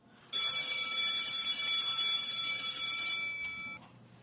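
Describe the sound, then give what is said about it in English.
A school bell rings loudly in one continuous metallic clatter for about three seconds, bright and harmonic-rich, then cuts off and leaves a brief ringing tail. “The school bell rings.”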